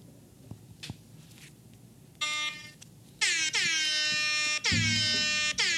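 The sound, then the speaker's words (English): An air horn sounds a short blast, then two long, loud, sustained blares with a brassy, buzzing tone that dips slightly in pitch at each start. No one speaks. “That was a weak horn.”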